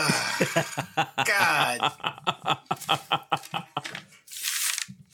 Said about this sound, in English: I hear him ripping up paper in the background.